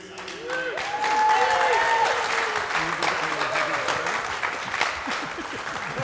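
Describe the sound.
Steady audience applause at the end of a live show at the World Championships, hosted by Quarry, a dense wash of many hands clapping at a fairly loud, even level, with a few whistles and murmuring voices rising through the noise.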